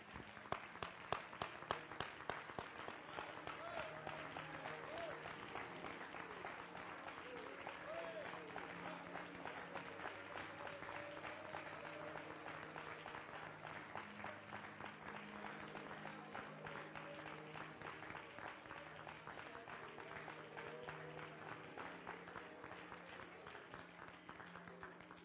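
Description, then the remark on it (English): A large church audience claps their hands to the Lord in praise for about twenty-five seconds, a dense, continuous wash of many hands with faint voices and murmurs mixed in underneath. “Would you clap your hands to the Lord and let's give Him praise.”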